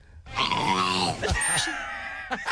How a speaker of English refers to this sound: But that whale's not speaking. Making noise. Yeah. It's just making noise.